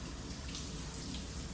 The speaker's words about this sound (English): Well, I get it, you're hot too, but you don't have to jump in the cold shower with me.